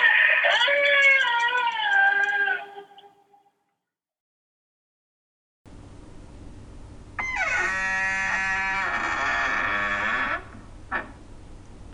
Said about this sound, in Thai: มันเสียงประตูอะ โอ้โห มันแหลมไง รู้สึกแบบว่ามันน่าสงสารแล้วก็น่ากลัวนะพี่บ้านนี้แบบประตูฝืดนะ